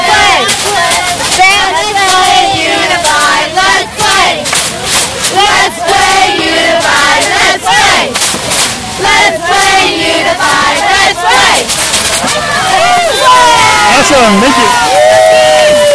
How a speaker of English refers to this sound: Do you guys want to give just one final cheer? Yeah. Okay, cheer.